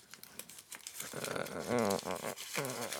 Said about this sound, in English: I shouldn't crumple these up so tight. Oh, geez.